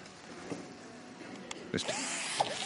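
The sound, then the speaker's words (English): An electric screwdriver whirs steadily for a few seconds, a thin buzzing motor sound with a few brief knocks and bumps mixed in, fairly quiet and with no one talking. “Ooh, and we've got a screwdriver.”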